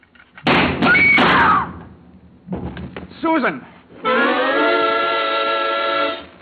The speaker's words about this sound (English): When Susan snapped the spring lock to open the door, the gun outside opened up. The first slug caught her in the left shoulder, spinning her out of the way of the rest of them.